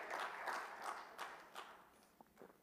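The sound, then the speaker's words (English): A church audience claps their hands to praise God in a dense, sustained burst of applause, many overlapping claps blending into a continuous wash that gradually thins out toward the end. “Clap your hands and praise God tonight.”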